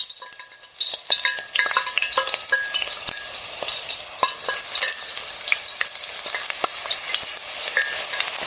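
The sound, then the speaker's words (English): Eggplant laid in a single layer frying in hot oil, in batches to crisp, a steady hiss of sizzling with dense crackles and sharp pops throughout, plus a few light scraping clicks; no one speaks. “We nestle the eggplant into a single layer in the oil, working in batches to crisp them all.”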